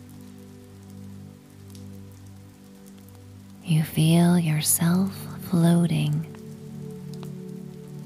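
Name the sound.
gentle rain falling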